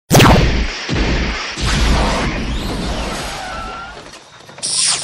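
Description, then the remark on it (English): A loud, dense whooshing sweep with booming low rumble and swirling, shifting noise that builds, dips, then surges again in a bright final burst, like a sci-fi time-travel effect. “I traveled into the future.”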